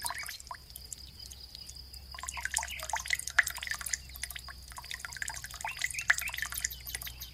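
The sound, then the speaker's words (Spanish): Rapid, irregular dripping and pattering of squirrel urine falling like rain onto a roof, a dense run of small wet taps that pauses briefly before resuming more steadily, with no voices. “¡Una lluvia amarilla de una ardilla!”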